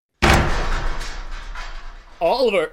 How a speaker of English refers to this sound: Sorry I had to bust the door, Everwine.